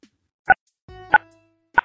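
Three short phone keypad DTMF tones, buttons pressed at the end of a phone call, each a crisp dual-pitched beep, spaced about two-thirds of a second apart, with a low buzzing hum rising under the second tone.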